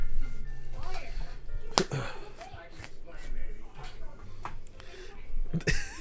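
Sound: slap to the face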